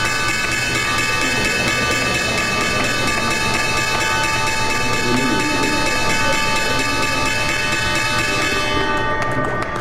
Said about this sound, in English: That was the opening bell on Wall Street.